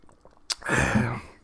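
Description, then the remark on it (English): A single sip from a drink: a quick wet click followed by about half a second of airy, slurping suction, with no talking. “Yeah, let me take a sip.”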